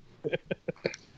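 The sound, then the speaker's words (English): A quick run of five or six short, clucking bursts from a chicken, fairly loud, in an uneven rhythm, with no talking. “Chickens.”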